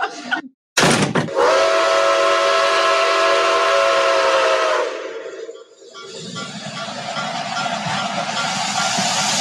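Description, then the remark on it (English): A 10-coach train pulls away from platform 1 of a station with a long, steady whistle tone over loud rumbling and hissing, then the sound dips briefly before the rolling clatter builds again, loud. “Platform 1 for the 1225. Watson wagon service to Russia.”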